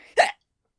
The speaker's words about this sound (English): He cut himself off at a hiccup before resuming.